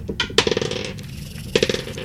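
Dice rolled for initiative clatter across a hard tabletop in two rattling bursts, a quick cluster of sharp clicks that tumble and settle, then a short pause before another throw skitters to a stop. No one speaks.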